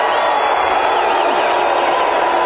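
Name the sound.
crowd cheering and applauding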